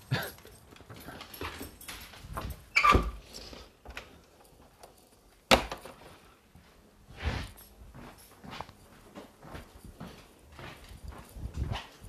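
A dog whimpers and whines in short bursts, mixed with clicking paws on a hard floor and a couple of sharper thuds, with no talking.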